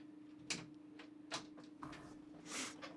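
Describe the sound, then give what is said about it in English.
A door being closed: a few soft, brief clunks and scrapes spread over a couple of seconds, quiet, over a low steady hum, with no one talking. “Can you close the door?”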